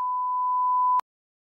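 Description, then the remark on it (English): A single steady, high-pitched censor bleep sounds for about one second, loud and clean, then cuts off abruptly into silence. No voices are heard. “Just go ahead and throw a bleep over that.”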